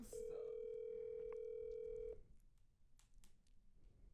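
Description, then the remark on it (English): A loud, steady telephone ringback tone holds for about two seconds on an outgoing call, then cuts off, leaving faint background noise and a few soft clicks. “Okay, let's try to call”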